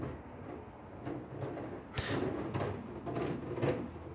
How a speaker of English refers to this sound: That's my next door neighbor doing the bins.